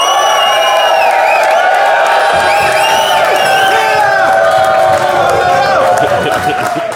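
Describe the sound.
A large audience at a .NET Rocks! recording on September 29, 2014, in Dumbo cheers and whoops loudly and continuously, with many overlapping high-pitched shouts and yells rising over a dense roar of voices for several seconds.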